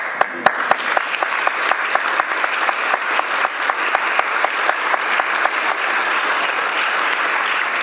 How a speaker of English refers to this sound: That's right. You should applaud. We're awesome.